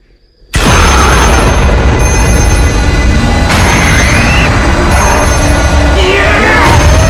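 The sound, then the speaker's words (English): An old telephone bell rings loudly and without pause, starting abruptly after a brief silence and buried in a dense wash of rumbling background noise. “That old sound of a phone ringing back when I was a kid was never good.”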